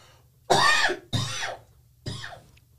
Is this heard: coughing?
yes